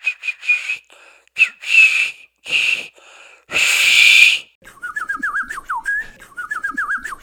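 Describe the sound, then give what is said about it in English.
A distinctive Northside neighborhood signal whistle: several loud, shrill whistled blasts, one held longer, followed by a quick warbling run of rising and falling notes. No one talks over it. “This is Northside Whistle.”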